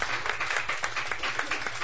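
A group applauds with dense, overlapping claps that stay fairly steady through the brief stretch, a bright crackling wash with no voices.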